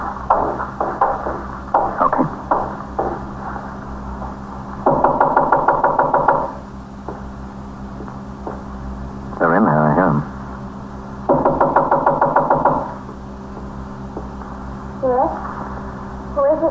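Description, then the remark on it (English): A police officer knocks loudly and rapidly on a front door in several insistent bursts, separated by pauses, while a steady low hum runs underneath and a few brief sounds fill the gaps. “Open the door. I'm a police officer.”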